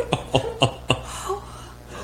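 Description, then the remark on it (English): Mimi, a sleeping dog, gives four short, breathy huffs in quick succession, then lets out a few faint, high whimpers as she dreams, with no talking. “She just doesn't sleep with us because, as you can tell, she's a bit of a loud sleeper. She snores. She makes a bunch of noise.”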